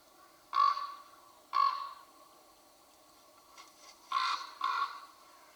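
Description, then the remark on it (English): A raven calls with harsh, throaty croaks: two spaced calls, a pause of a couple of seconds, then two more in quicker succession, fairly clear against a faint, steady background hiss. “Are there any scenes that come into your mind when you hear the sound of a raven?”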